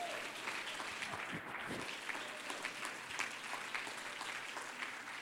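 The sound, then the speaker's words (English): An audience claps their hands to the Lord in a steady wash of overlapping applause, dense and sustained for several seconds with crisp, scattered hand strikes throughout. “Oh, clap your hands to the Lord if you're thankful for his word.”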